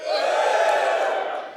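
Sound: audience cheering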